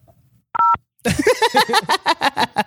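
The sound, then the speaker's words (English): A single short telephone keypad tone beeps once, a steady two-note electronic pitch, followed by a loud run of rapid, rhythmic warbling bursts. “Thank you for calling Iconoclash. Please press 0”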